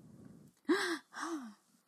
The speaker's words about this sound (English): Council members gasp. A murmur spreads throughout the room.